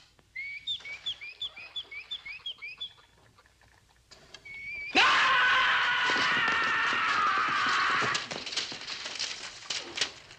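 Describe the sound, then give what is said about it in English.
A nightingale sings alone: a quick run of repeated high chirps, a brief pause, then a loud, rich, buzzing warble that breaks into choppy, staccato notes. “Here's a nightingale.”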